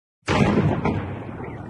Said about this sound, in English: So they went for a daytime strike. It was a huge explosion when this boat was hit.